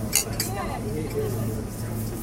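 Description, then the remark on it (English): Beer glasses clink together in a toast, two quick, bright taps right at the start, followed by a low, steady background hum with faint murmuring. “Cheers again.”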